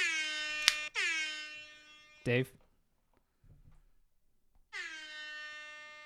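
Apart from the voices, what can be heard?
air horn blasts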